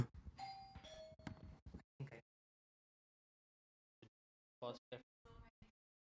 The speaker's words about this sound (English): So, yeah, sorry for the interruption. We just got ding dong ditched.